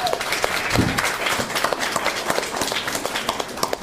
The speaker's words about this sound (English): Keep clapping.